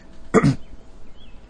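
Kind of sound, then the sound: human body sound, cough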